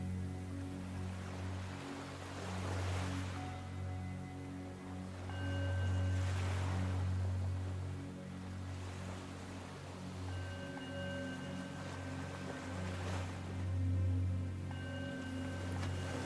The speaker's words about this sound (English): Breathe in deeply. Exhale fully. Allow the sound of the waves to calm your mind.